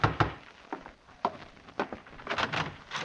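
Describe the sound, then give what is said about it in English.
Heavy knocks on a wooden door, struck several times in irregular bursts, some close together in pairs, loud with short gaps between, and no talking. “Open! Open the door!”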